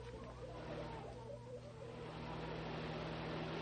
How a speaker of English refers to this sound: Hey, here comes a car. It looks like Jim Brownlee.